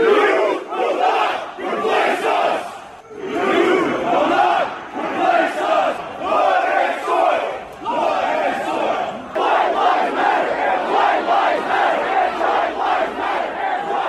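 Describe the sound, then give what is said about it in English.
A large crowd at the 2017 Unite the Right rally chants and yells loudly in rhythmic, repeated bursts, shouting things like "blood and soil", "white lives matter", "hail Trump" and "you will not replace us", a dense roar of many voices that barely pauses over fourteen seconds, with brief dips between shouted phrases. “I mean, they're yelling things like blood and soil, white lives matter, hail Trump.”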